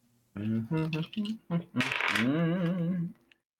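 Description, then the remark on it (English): A quick clattering rattle of dice being rolled in a tabletop game, coming up snake eyes on the first roll, with a person's voice vocalizing over and around it for a few seconds. “Snake eyes on the first roll.”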